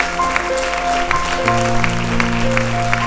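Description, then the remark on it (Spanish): A church audience applauds loudly for the King of Kings, Lord of Lords, with dense, sustained clapping, a few sharper claps standing out, over steady held keyboard chords that shift pitch partway through. “Vamos a darle un aplauso fuerte al Rey de Reyes, Señor de Señores.”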